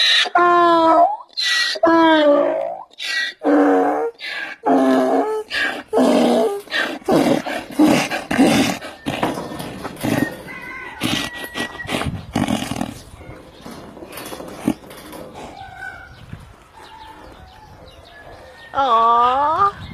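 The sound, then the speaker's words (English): A donkey brays loudly in a run of harsh, seesawing hee-haw calls that turn ragged and breathy midway, then trail off before one last strained bray at the end. “Don't you just want to hug that donkey?”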